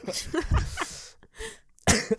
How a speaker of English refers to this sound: Me coughing is going to be a common thing throughout this episode. If this makes you uncomfortable, you should stop listening.